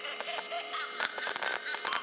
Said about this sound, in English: begins to peel off the plastic face of itself, revealing the speaker underneath. And you hear this. Which is that cool static sound?